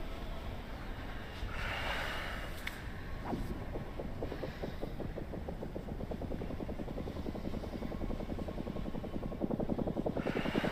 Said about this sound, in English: The fluttering sound that accompanied the movement of time was quite good.